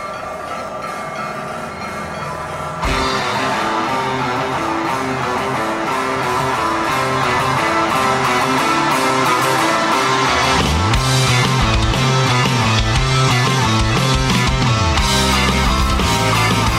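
A rock band's recording of a Christmas song plays loudly, a dense, droning wall of guitar that thickens after a few seconds, with a heavy low bass line joining partway through. No one speaks.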